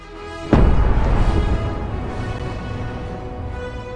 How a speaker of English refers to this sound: It was such a gruesome death, we deserve two cannons.